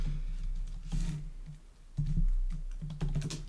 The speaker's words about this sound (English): That's what I'm about to do. So I'm typing in right now.